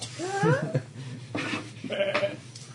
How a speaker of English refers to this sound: Hey, what's a mountain goat doing up this high?